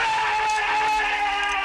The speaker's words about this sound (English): It's a default sound effect, like a fucking Willem scream or something. Wilhelm. Did I say Willem? Yeah, it's not Willem Dafoe. I'm going to cut William Dafoe screaming.